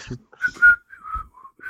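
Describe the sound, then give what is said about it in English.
A short, jaunty tune, the Popeye theme music, is whistled by an alien hybrid aboard a ship as it takes off. Several clear notes rise and fall in a quick melodic phrase, with a few brief low vocal sounds mixed in. “And it's whistling the Popeye theme music.”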